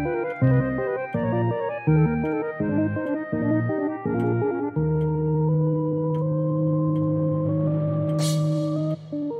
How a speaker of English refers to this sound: With the sound of the cuckoo, you know that it is time for the Clockwork Cabaret.